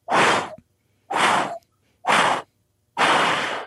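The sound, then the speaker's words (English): A voice imitates the wing beats of a great hornbill, a bird 1.3 meters (4 feet) from bill tip to tail tip, flying overhead, with four strong, breathy whooshes in a slow, steady rhythm, each about half a second long and separated by short silences. “And when they fly over you, you hear these birds. It's the wing beat goes like this.”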